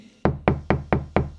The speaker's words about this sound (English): Maureen was taken to the big policeman's office. She knocked and went in.